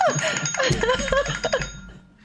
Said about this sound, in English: but no, that's actually my phone over there ringing. I normally mute my phone and I forgot to, so.